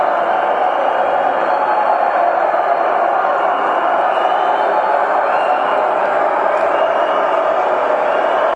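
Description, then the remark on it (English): Recorded crowd noise piped over loudspeakers by Manchester City in an empty stadium: a steady, dense roar of many blended voices, slightly muffled and lacking high end, holding an even level with no swells, cheers or pauses. “So this is basically Manchester City are playing crowd noises through their speakers.”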